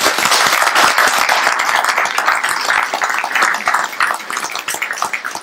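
An audience breaks into a sustained round of applause, a dense, steady wash of many hands clapping at once, fairly loud and close, with no voices standing out.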